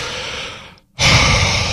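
Heavy breathing through a mask: a long, hissing exhale, a brief silent pause, then a louder, rougher breath, with no one speaking.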